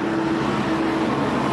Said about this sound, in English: Sorry, there was just a semi-truck that drove by.